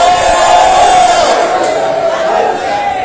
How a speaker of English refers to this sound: No, you're not just shouting, you're shouting in the Holy Ghost. You're shouting in victory.